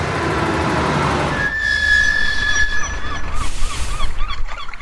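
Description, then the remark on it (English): Seaside port ambience: a low rumbling wash gives way to a long, steady horn blast, followed by gulls calling repeatedly over a busy background hum. “The next morning, it pulled into a port by the sea.”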